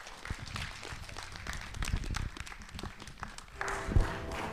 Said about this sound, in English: a round of applause as they come up and bless us with the word.